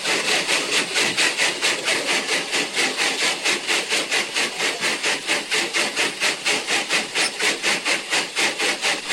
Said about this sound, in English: Now obviously the footage I took is not of much use to this radio programme, but the sound of the engine working hard on that incline, which is 1 in 10 in places, is well worth listening to.